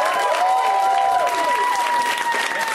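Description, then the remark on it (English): A comedy show audience, hosted by Cameron Esposito, applauds the comics loudly and steadily, a dense wash of clapping with whoops, whistles and shouted cheers rising above it throughout. “Let's hear for those comics.”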